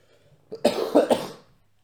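A fairly loud cough: a brief catch followed by two or three rough, hacking bursts in quick succession, then quiet.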